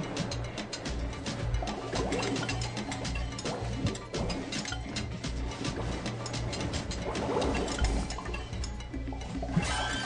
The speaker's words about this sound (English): The bubble blower.